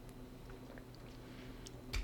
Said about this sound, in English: Oh, I had to drink that water.